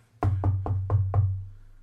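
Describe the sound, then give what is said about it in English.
Five quick, evenly spaced knocks rap out in a steady rhythm, fairly loud, with a low hum running underneath and no talking. “I hope that knock actually, like, came through on the mic.”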